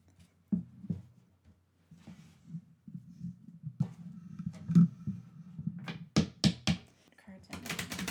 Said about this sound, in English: All right. So I'm going to shuffle the cards.